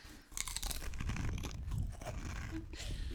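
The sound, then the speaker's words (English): Loud crunching and chewing of two Pringles potato crisps of a new flavor at once, a steady run of brittle snaps and munching with no talking over it. “You're going to have two crunch. At once with Pringles, but let's see if we can guess this new flavor.”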